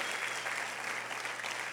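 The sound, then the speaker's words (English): An audience applauding the Lord in a steady, dense wash of clapping that holds at an even level throughout, with no individual claps standing out and no voices rising above it. “A round of applause if you believe.”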